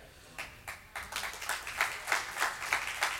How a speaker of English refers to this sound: It's powerful when you can get, when scripture makes you clap, right? Because you're understanding this man's faith.